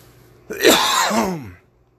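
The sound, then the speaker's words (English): A single forceful throat-clearing cough, rough and harsh, lasting about a second with a gravelly, descending rasp at the end. No talking during it. “Wait, I gotta get a good cough in here to clear my throat.”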